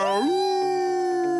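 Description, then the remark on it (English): A human voice imitates a wolf howl: one sustained, tonal call that slides upward at the start, then holds steady and loud for over a second. “I'll howl to that.”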